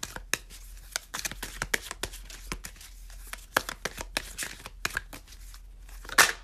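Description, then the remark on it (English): A deck of cards being shuffled: a run of crisp, irregular flicks and snaps over several seconds, ending in a sharper riffle, with no one talking. “These have a good shuffle to them.”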